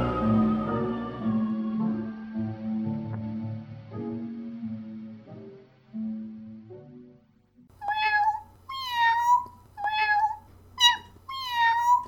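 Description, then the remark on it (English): A short melodic musical phrase of a jingle fades out, then a cat meows several times in quick succession, loud, each meow rising and falling in pitch over a low steady hum. “Gumby Cat Productions. Podcasts for podcast people. Meow.”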